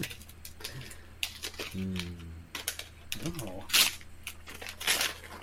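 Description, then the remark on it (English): Crisp bursts of gift wrapping paper crinkling and tearing as a gift is unwrapped come in quick irregular rustles, with a few brief vocal sounds in between. “Ooh, this paper actually opened very nicely.”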